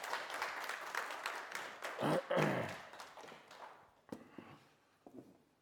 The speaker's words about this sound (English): Thank you so much for sharing. Give him a round of applause, man. Thank you, bro.